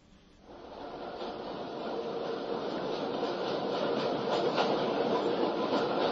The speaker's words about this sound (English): Let's see if the train sounds skill is still operative. Alexa, open train sounds.